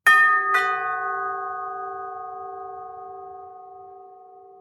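A two-tone doorbell chime, a quick ding-dong struck twice in close succession, its bright ringing tones lingering and slowly fading over several seconds, heard alone.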